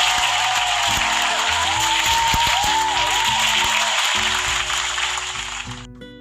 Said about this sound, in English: First and foremost, thank you for being here. Round of applause always to you guys.